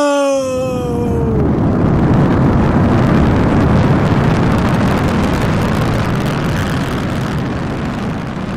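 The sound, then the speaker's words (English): Five rocket sleds launching into the air at the start of a race: a brief whine drops in pitch, then gives way to a loud, steady, rushing roar of thrust that holds for several seconds and eases slightly at the end. No voices. “Five rockets burst into the air, and they were just specks in the sky within seconds.”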